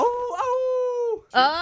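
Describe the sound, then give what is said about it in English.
A person imitates a dog howl twice, loud: a long, steady, tonal howl, then a brief gap before a second, brighter howl begins and is cut short. “Two howls.”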